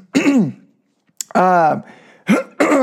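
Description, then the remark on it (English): A person clears their throat several times, with loud, voiced, gravelly grunts separated by short pauses. No words are spoken. “clearing my throat.”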